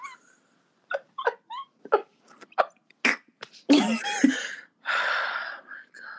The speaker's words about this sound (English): Then I kicked him out. Here he is barking.